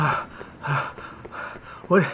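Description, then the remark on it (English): Heavy, rhythmic panting, about four quick breathy huffs in a steady cycle, ending in a louder voiced gasp. “Are you in pursuit of the target? No. I'm breathing like this because I'm getting a hand job.”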